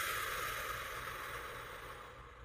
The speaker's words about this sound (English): So one of my favorite ways to practice mindfulness, as I've mentioned many times on this video, is just through the breath. You know, breathing in nice and deep and out.